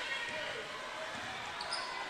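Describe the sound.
A basketball is dribbled on a hardwood court, its dull bounces repeating at a steady pace beneath a constant wash of crowd noise and murmured voices.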